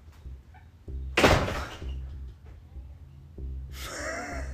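Several dull thumps on a door, spaced irregularly, with one louder impact near the start and a burst of hissy rustling toward the end; no one speaks.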